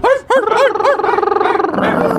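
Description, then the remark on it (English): Voices imitating dogs let out a quick run of high, yappy barks and yips, loud, bunched tightly together before trailing into a drawn-out whiny howl. “No, imagine being on the train with your headphones on and you say, I'm not going to laugh at them barking like dogs.”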